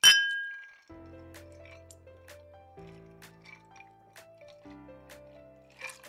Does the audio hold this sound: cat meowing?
no